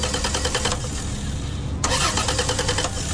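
A car engine cranks rapidly without catching, pauses for about a second, then cranks again with the same fast, grinding rhythm. Fairly loud, with no voices.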